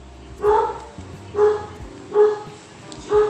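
A dog barks loudly four times at a steady, evenly spaced rhythm, each bark sharp, with a low rumbling background beneath.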